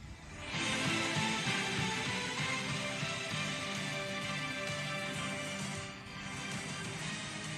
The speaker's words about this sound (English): The CBS new theme song 2021 and beyond.